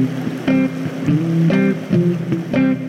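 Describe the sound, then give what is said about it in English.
Steady rushing of Stevens Brook tumbling over rocks in East Sutton, New Hampshire, near Interstate 89, fills the background, with a few brief tonal, humming bursts rising over the flow at irregular intervals. No one speaks. “Today we're in East Sutton, New Hampshire, and we've paused by Stevens Brook, almost in the shadow of Interstate 89,”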